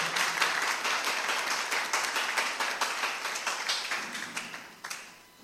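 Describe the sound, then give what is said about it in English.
A crowd claps steadily, many hands blending into a dense, continuous patter of sharp slaps, sustained for several seconds before tapering off at the end. No voices are heard. “Why are you clapping as if you are sad?”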